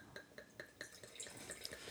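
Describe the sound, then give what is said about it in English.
Dark-coloured wine glugs steadily into a glass, a quick run of rhythmic liquid gurgles with bright splashy tones, fairly quiet, with no talking over it. “We're ready to pour.”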